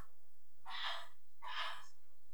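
Two muffled, breathy coughs from a man in a bathroom after getting hot sauce on his chin, spaced under a second apart, faint, with no talking.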